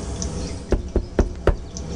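Four firm knocks on a door, evenly spaced, with a steady low background hum and no voices, in a muffled recording dated June 11, 2002.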